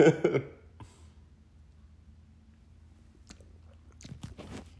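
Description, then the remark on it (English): Sipping a mimosa: a brief clatter at the start, a quiet pause, then a few wet mouth clicks and a swallow near the end. No one speaks. “And we are back with my mimosa. Let me take a sip real quick.”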